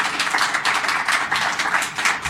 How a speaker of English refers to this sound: So let's give it a round of applause just for the program.